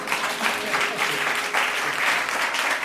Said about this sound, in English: Ushayele izandla.